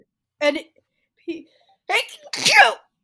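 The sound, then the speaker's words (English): A few short, quiet vocal sounds lead up to one loud sneeze, an abrupt breathy burst near the end followed by silence. “Bless you. Thank you.”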